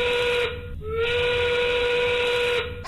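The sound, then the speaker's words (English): The 5 o'clock steam whistle on Denver radio station KKFN blows a loud, steady, shrill tone with a hissing edge, briefly faltering and sliding in pitch before sounding strongly again to the end. “The 5 o'clock whistle, powered by smart local union 9 sheet metal workers.”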